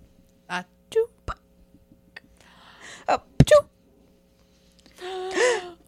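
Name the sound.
sneeze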